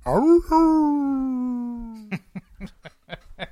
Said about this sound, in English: However, celebrations are cut short when they hear more howls coming from the forest.